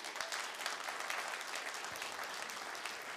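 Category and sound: crowd, audience applause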